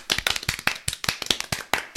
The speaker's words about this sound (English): Round of applause. Thank you.